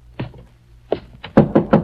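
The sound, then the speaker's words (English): Heavy fists pound on the outer wooden door of an old, dilapidated mansion at 9 o'clock: two separate thuds, then a quick, forceful burst of three blows, loud with a booming low resonance. “An oil lamp clutched in her gnarled hand to answer the violent pounding on the outer door.”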